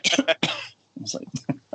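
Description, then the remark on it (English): A voice imitates a small cough: a few quick, breathy hacking bursts, followed after a short pause by a person talking. “But I started to cough on the, like, just a small cough on the airplane, which is packed.”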